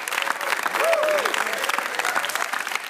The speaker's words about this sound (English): Let's have a round of applause for everybody here at Tulane University.